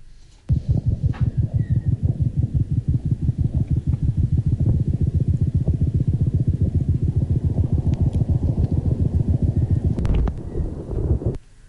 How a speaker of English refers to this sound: So you can hear the resting heart rate when the bird is very relaxed, and then when it detects me approaching and how the heart rate starts elevating.